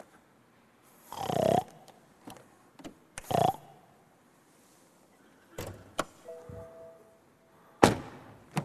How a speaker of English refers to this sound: I hear a pig. Do you? I can't believe it.